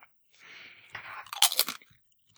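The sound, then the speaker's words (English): Loud, crisp crunching of Kettle Original Sea Salt potato chips, a few sharp bites followed by a burst of brittle chewing, with no talking over it. “Those are good chips.”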